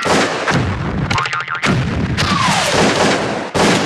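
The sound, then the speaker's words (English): Several loud gunshot effects fire at irregular intervals, each with a sharp crack and a booming, reverberant tail, with a brief whistling tone between shots and no talking. “You think you're gonna take this here gun away from me? Guns, truth, guns, truth. Bang!”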